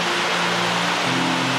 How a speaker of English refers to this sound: It's raining heavily here, but that's okay.